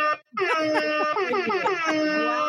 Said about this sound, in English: If I can get my hip hop air horn button to work, you get all of them.